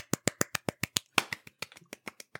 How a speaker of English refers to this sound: I love the form of applause of everybody in the audience taking turns to individually clap.